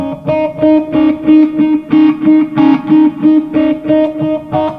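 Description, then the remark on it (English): Steady, rhythmic palm-muted electric guitar notes on the E string, muted with the finger pads, chug along on their own, fairly loud, with reverb, delay echoes and a swirling Phase 90 phaser smearing each pulse into the next. “But then if you add like a little bit of reverb, a little bit of delay, and the always important phase 90 to this thing.”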